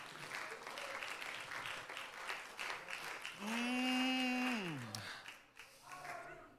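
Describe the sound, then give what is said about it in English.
A church audience claps in thanks to God in a dense, steady wash of applause, while partway through a voice cries out a long sustained note that slides downward before the clapping continues. “Anybody that needs a friend, anybody that's not perfect, ought to wave their hand or clap their hand or lift their voice and say, thank you, God, because you're a friend of sinners.”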